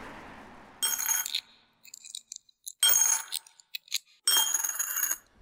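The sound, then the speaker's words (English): Keys jingle in three bright metallic bursts, with a few scattered clinks in between. No one speaks. “Where are my keys?”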